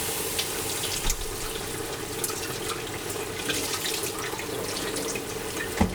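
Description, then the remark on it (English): A kitchen faucet runs steadily, a continuous rushing stream with small splashes and knocks as eggplants are rinsed under it before frying, fairly loud, with no talking. “I'm gonna rinse these eggplants off.”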